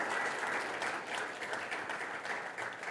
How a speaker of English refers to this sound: Can we give them a round of applause for such a great job?